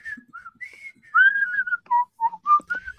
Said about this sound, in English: I went in, and I don't know why. I have a habit of like whistling whenever I go into a gas station. I don't know why. I just do. I just enjoy doing it.